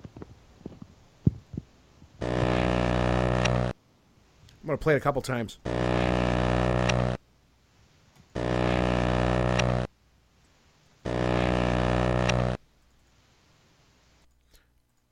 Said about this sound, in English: this is that buzz reversed and as is. So it just sounds like a buzz, but try to see if you can hear anything embedded within it.